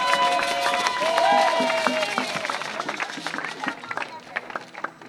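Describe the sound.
An audience claps in a scattered, uneven burst of many hands at once, building from under loud voices and crowd noise into sharper, more distinct claps toward the end.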